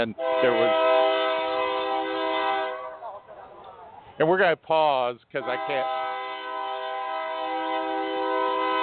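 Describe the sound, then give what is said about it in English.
A loud freight train horn, apparently an oil or sand train passing in Rosenberg, blares in long sustained chords, cutting off briefly as rumbling rail noise continues; a person speaks briefly over it in the middle. “that's just one of the 50 to 60 freight trains a day that we have go by here.”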